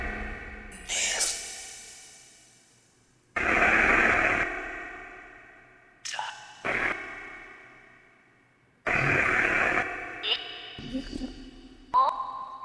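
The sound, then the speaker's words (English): Loud bursts of hissing white noise from a spirit-box app, on its white-noise-with-reverb setting, switch on and off with echoing, reverberant tails, broken up by short warbling, voice-like fragments that swell and decay between the bursts. “Let's try the white noise with the reverb.”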